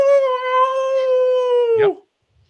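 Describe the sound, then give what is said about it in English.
A voice imitates a howl: one loud, steady note held for nearly two seconds before cracking and breaking off abruptly, followed by silence. “So as she holds the weapons that you gave her, she runs to this clearing, and she's still in your view, but she just takes off, and she stands on this clearing, and she howls out, "Ow!"”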